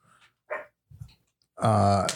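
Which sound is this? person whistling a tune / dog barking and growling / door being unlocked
dog barking and growling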